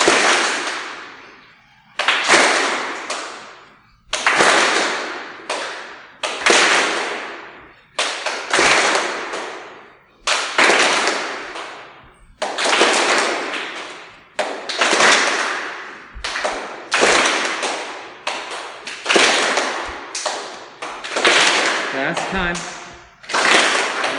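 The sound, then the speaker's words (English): Sharp hand claps above the head, made during full body swings in a warm-up, repeat in an uneven rhythm, roughly one every second or two, each a bright burst that rings out briefly before the next. No one speaks between them. “So we inhale and clap above the head.”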